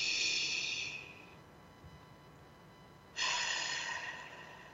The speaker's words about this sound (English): Take a deep breath in through our nose, out through our mouth like through a straw. One more time.